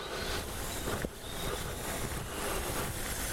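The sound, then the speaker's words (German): Water splashes and burbles steadily with a dense, rushing texture, with a brief dip in the middle. Nobody speaks. “Irgendwas plätschert hier. Was plätschert denn hier was?”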